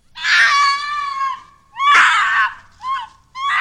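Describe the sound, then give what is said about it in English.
A high-pitched, blood-curdling scream of a reported creature with a horse- or goat-like head, bat-like wings, horns and hooves: one long shrieking cry, then a second loud burst and two shorter, sharper yelps, harsh with no talking. “It has been reported to move quickly, and it's often described as emitting a high-pitched, blood-curdling scream.”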